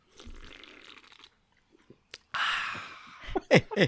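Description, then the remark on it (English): A Mountain Dew Zero Code Red soda being sipped: a short rustling slurp, a few soft clicks, then a longer airy, fizzy sip followed by brief gulping sounds at the end. “And we heard the sip there, yeah.”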